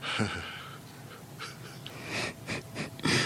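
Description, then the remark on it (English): Several heavy, breathy exhalations and wheezy inhales, in uneven bursts, with a faint murmur of a voice underneath. “Sorry, I just had to let some air out. Oh, my God. Sorry. Just breathing.”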